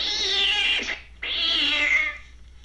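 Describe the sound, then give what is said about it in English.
A loud cat yowl in two long, strained bursts separated by a brief pause, harsh and wailing like a startled or angry cat, with no talking; a movie jump scare in which a cat suddenly jumps out. “No, the cat just jumps out and what is loud.”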